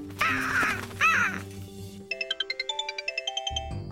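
A bird gives two loud, harsh caws, one after another, then a phone's electronic ringtone takes over with rapid, evenly spaced beeping tones.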